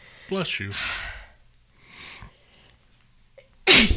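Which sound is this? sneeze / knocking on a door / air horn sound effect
sneeze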